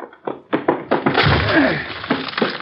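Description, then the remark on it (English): The locked door of Kessler's room is broken down: a few heavy thuds land in quick succession, then a loud, sustained crash of splintering wood. Forceful, with no talking. “We'll have to break down the door.”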